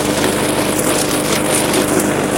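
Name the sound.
lawn mower running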